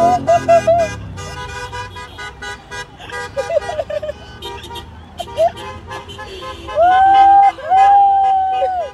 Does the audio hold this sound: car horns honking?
yes